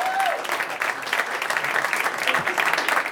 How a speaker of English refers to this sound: Let's give it a big round of applause for the second round, folks.